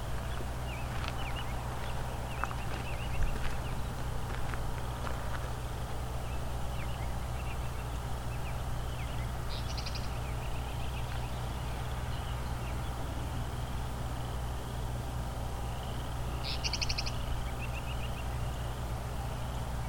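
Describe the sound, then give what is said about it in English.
A meadowlark sings in flight, two short, high, bright bursts of song well apart, fairly faint and distant over a steady low rumble and outdoor background noise. “So he just sang while flying. Something they do sometimes.”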